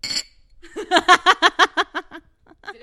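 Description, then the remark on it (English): A quick bright clink of martini glasses, filled with dirty martinis, in a toast rings out at the start, then a burst of rhythmic, fading laughter follows. “Cheers. Let's cheers into the microphones.”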